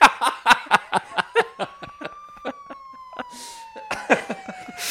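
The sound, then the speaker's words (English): A police siren wails in a slow, drawn-out rise and fall, while a string of short, rhythmic bursts of laughter punctuates the foreground. “I think I hear sirens, so I'm going to go.”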